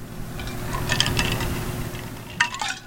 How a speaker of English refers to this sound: That noise you keep hearing is just me taking a sip. I got to stay hydrated in this podcast. I got to keep my whistle wet.